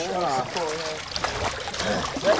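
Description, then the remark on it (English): Water splashes and trickles as a ceramic diffuser is hauled up from the bottom of a lake, dripping steadily, while people talk over the sloshing. “So I'll pull a diffuser up.”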